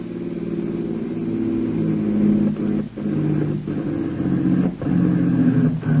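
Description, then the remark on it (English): A stolen car's engine runs steadily, then sputters and briefly cuts out several times near the end as its gasoline gives out at the crest of a high hill, with no one speaking. “As they reached the crest of a high hill, their gasoline gave out”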